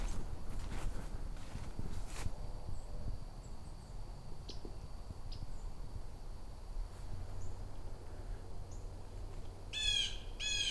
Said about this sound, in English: Okay, coming up in another yellow rump warbler.